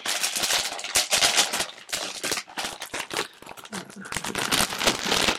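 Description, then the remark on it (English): Loud, dry crunching of someone chewing brittle Nissin instant noodles from the dollar store, a dense run of sharp crackly bites in an uneven rhythm that keeps going for several seconds with no talking. “I don't think you can hear me over it when I'm crunching. Let me crunch for a minute.”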